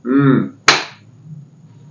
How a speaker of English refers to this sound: Slapping that ass while I